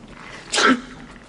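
A single sharp sneeze bursts out, a quick explosive blast lasting about a quarter second before fading into quiet.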